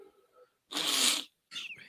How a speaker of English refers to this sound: Oh, shit. I'm sorry. Not right now. Yeah, I thought I was going to sneeze.